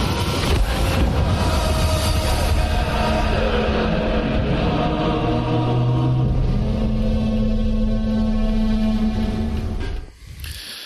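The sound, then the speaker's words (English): A deep foghorn blares in long, steady low tones over a loud, constant rumble, holding for several seconds before the sound cuts off abruptly near the end. No one speaks. “Man, that foghorn sounds like a kaiju.”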